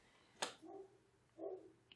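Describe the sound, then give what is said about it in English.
A dog barks faintly in the background during a pause of silence in a recording, two or three muffled, short barks spaced apart against near silence, with a small click near the start. “I don't know if anybody heard the dog barking in the background,”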